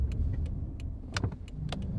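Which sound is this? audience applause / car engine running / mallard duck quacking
car engine running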